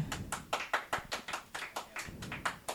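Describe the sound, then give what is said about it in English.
An audience, asked to clap if they have quit smoking cigarettes, claps in a quick, fairly even rhythm: about a dozen sharp, bright claps over a few seconds, moderately loud, with no one talking over it. “Who clap it up in this room if you have quit smoking cigarettes?”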